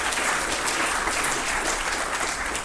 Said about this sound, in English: Give him a round of applause there.